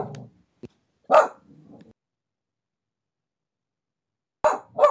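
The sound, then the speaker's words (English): A dog barks in short, separated bursts: a couple of sharp barks with a low growl between them, a long quiet gap, then two more barks at the end. “Damn dog.”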